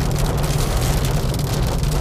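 Rain falls steadily during a storm, making a dense, even hiss with a heavy low rumble underneath, constant and fairly loud throughout, with no voices.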